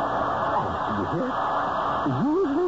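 A vacuum cleaner is switched on and runs with a loud, steady whirring hum, its motor tone wavering up and down now and then without stopping.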